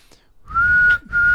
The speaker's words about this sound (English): Why are you laughing? I can't whistle when you laugh.